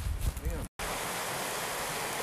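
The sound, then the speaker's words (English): A small brook at a trailhead rushes and gurgles steadily in cold weather, a continuous hiss of flowing water after a brief cut, with some low wind rumble at the start. “And now we're at the Babbling Brook at the trailhead.”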